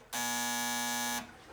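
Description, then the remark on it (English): A door entry buzzer sounds once to buzz someone in, a loud, steady harsh electric buzz lasting about a second with a rich, raspy tone, then cuts off abruptly. “Hello, I don't want to have to to stand back and scream, please buzz me in.”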